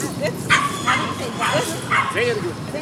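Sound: dog barking and whimpering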